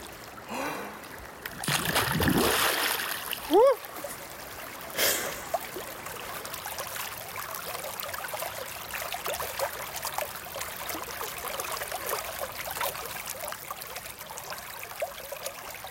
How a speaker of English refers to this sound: What a rare treat. To experience not just the sound of water, but the sound of a swimming hole.